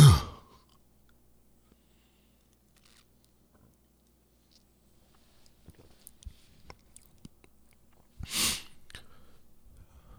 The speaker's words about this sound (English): And this is what beer is all about. So again, let me just take another quick sip.